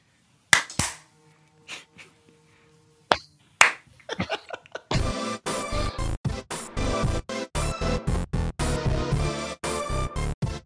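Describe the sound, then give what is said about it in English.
A few scattered, hesitant single claps give way to a group clapping together for a couple in a loud, steady rhythm on a count of three, the sharp beats evenly spaced and continuing to the end. “Clapping for one, the couple. Here we go. Two, three. Everybody three. Clap.”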